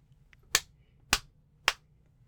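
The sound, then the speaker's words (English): Three sharp slaps of hands on skin land in an even rhythm about half a second apart, each a crisp, bright smack that dies away quickly, with no talking around them. “I like the little triplet, and it sounds like there's some flesh in there. It sounds like there's some skin.”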